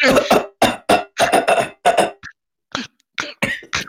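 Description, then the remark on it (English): A voice imitates choking on a chicken bone in the throat: a rapid run of harsh, strained coughing bursts, then a brief pause and a few shorter, weaker gasping coughs trailing off. “It's a chicken bone in the throat.”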